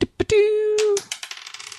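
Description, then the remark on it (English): A couple of sharp clicks and a brief ringing tone, then dice clatter across a hard table in a tabletop role-playing game damage roll, rattling in a quick run of small taps that slow and fade out. No voices. “So you're doubling all the dice.”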